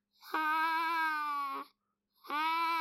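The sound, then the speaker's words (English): A bedroom closet door slowly sways back and forth, creaking in a long, drawn-out, whining squeal, pausing briefly, then creaking again as it swings back. Clear, with no voices. “That's not her cat trying to get in her bed. That's the door slowly swaying back and forth.”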